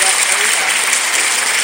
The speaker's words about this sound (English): This one. Clap.